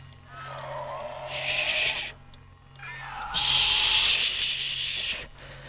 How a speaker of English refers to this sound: The ant caught in the cooling tank, well, I'm sure you can hear her. Just the one now. She must be hungry, too. I think she's eaten the others.